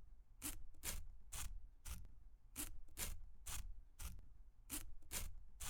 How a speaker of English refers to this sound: You take your sheet of stamps like that. You get your scissors. You cut up this side.